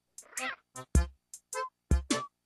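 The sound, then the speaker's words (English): A string of cat meows in a played music track with what sounds like an accordion: about seven short, clear calls in quick rhythmic succession, some rising and some falling in pitch, fairly loud with brief gaps between them. “Somebody did just meow.”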